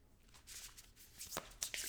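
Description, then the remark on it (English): A deck of cards being shuffled, quiet papery fluttering and riffling in brisk bursts with a couple of sharper snaps near the end, and no one speaking. “A flyer means it flew out of my hand as I was shuffling, and that means it's for us to definitely add to the mix.”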